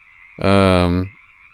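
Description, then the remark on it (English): A single loud, deep frog croak swells in and holds for under a second before cutting off, over a faint steady buzz of background ambience. “The frogs continue leaping forward.”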